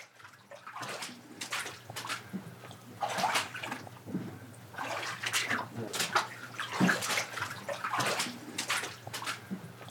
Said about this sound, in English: It's late November, and I'm wading through a dark basement on the outskirts of downtown Montpelier. There's ankle-high water, and it smells like raw sewage. A little stinky down here.